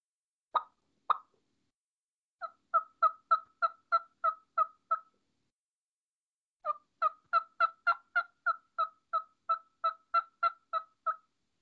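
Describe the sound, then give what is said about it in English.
Two sharp clucks from a turkey call, then a steady run of soft, evenly spaced yelps, a short pause, and a longer series of yelps, all clear with no talking. “Could you kind of give us an example of those clucks and soft yelps that you would do first thing?”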